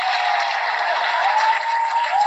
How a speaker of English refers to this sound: We got some applause for you.